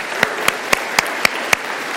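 A crowd of players applauds themselves at the end of a game of Simon Says, a dense steady patter of clapping with a handful of sharp, louder claps punching through at an even, quick rhythm. No one speaks.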